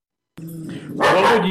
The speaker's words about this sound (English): I think the dog would be mad at me if I don't say. Trying my best to cover up the dog barking. It's not working.